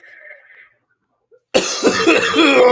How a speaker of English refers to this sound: Hold on. coughs